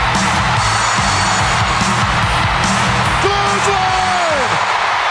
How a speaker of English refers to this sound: Do you hear that crowd? Just freaking screaming, yes. Okay. I know it's not an easy thing to audibly hear this crowd, but if you watch this video, you can see not one person is sitting down.